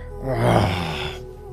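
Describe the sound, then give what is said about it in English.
A single drawn-out human yawn, fairly loud, with a voiced, groaning tone that swells and then trails off into a breathy exhale. “I'm sorry, I'm yawning.”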